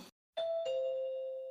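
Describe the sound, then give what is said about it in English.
A two-tone doorbell chime, rung by a postman delivering something, rings once, a higher ding followed quickly by a lower dong that lingers and fades slowly, clear, with no talking. “And there's the doorbell.”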